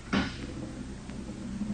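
A door opens with one short, close wooden clunk and a brief creak, then a low steady hum carries on underneath. No one speaks.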